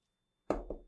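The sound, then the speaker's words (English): Three sharp knocks on a door, fairly loud, the first two quick together and the third after a brief pause, each with a hollow, resonant thud and short decay. “Russia goes, knocks on Japan's door.”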